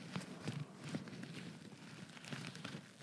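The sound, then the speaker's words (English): A TheraBand rubber exercise band being rubbed, giving soft, irregular scratchy friction strokes with a few brighter squeaky bursts, heard alone without any talking. “That TheraBand I still left in my bag.”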